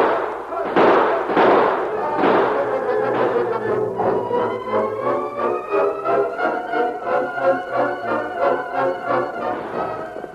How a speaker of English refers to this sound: Now, open fire. Shoot to kill.